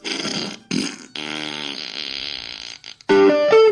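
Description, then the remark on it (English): Loud, buzzy auto-tuned fart sounds pitched into a melody, stepping through a rock riff in short bursts with brief gaps, ending on sustained tuned blasts, no talking over it. “So it's auto-tuned farts.”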